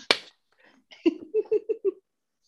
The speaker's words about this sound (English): Clap if you think he should suffer.